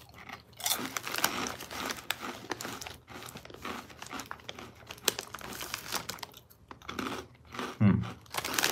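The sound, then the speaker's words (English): Crisp crunching of Bugles Cinnamon Toast Crunch corn snack chips, made mainly of degermed yellow cornmeal, being chewed, with crinkling bag rustles and irregular bursts of bites continuing throughout, no talking. “Bugles, Cinnamon Toast Crunch, blasted with Cinnadust.”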